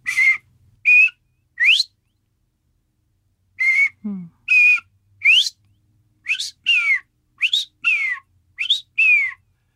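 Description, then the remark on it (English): Bobwhite quail calling their coveys home in a run of clear, high whistled notes, some steady and some sweeping upward or downward, loud and grouped in twos and threes with a short pause early on. No talking. “bobwhite quail are calling coveys home”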